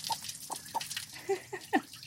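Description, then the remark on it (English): A hen gives a series of short, soft clucks, about six quick notes at uneven intervals, over the steady hiss of running water as she is given a cold shower. “Just showering a chicken.”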